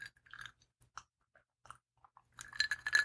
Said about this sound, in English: You hear the ice?